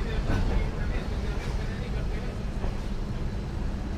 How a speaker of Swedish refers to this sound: Yeah, sitter mitt på E4 här. Ja, vi låter de här lastbilarna köra på bil.